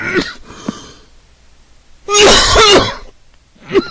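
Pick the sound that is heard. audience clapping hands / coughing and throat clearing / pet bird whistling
coughing and throat clearing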